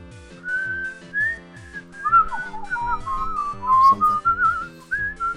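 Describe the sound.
A person whistles the Harlem Globetrotters theme, a bouncy, jazzy melody over a steady, thumping backing beat, the tune sliding up and down in lively phrases, clear throughout.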